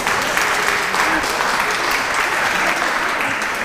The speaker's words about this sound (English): Round of applause, yeah.